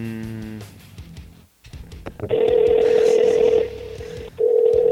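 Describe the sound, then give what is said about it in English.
A phone call being placed to Stephen Wayne: a quick burst of dialing tones, then a loud, steady ringback tone that drones for over a second, pauses, and starts again, with no talking. “Fingers crossed that he picks up.”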